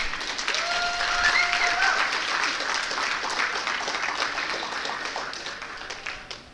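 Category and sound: crowd, audience applauding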